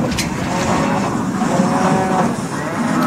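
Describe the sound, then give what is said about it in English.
Several cows moo loudly, their long, overlapping lows running almost without a break over a dense, noisy background. “Try telling that to my cows.”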